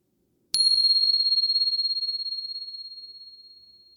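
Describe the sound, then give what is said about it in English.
A single bell is struck once, giving a bright, clear tone that rings on and slowly fades over several seconds with a gentle shimmer. It stands alone in quiet surroundings. “And here comes the bell.”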